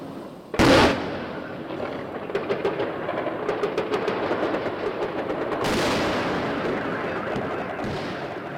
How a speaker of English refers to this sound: Now, if you're watching this from, or I'm sorry, if you're listening on a podcast platform, it is just thousands of trace rounds going up into the sky, knocking Russian incoming out the sky. You can hear the car alarms going off.